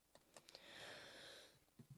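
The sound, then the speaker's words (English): A single sharp, loud sneeze bursts out at the very end, preceded by a soft breathy hiss and a few faint clicks, with no talking. “Bless you. Thank you.”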